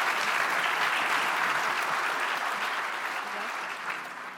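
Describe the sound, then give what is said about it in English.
Sustained audience applause for a panel at the RICO Symposium, a dense, steady wash of many hands clapping at full strength, easing off only slightly toward the end with no voices standing out. “But if I could get another round of applause.”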